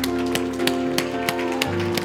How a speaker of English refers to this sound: Give him one more hand clap and shout of praise.